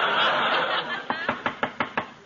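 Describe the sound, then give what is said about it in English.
About six quick, evenly spaced sharp knocks as a salesman raps on a door, coming after a second or so of a dense, hissy background wash. “Well, what are you knocking again for?”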